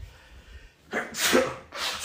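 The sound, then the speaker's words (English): A sharp sneeze bursts out after a quiet moment, followed by a brief breathy exhale or second smaller burst, with no talking. “A little sneeze there.”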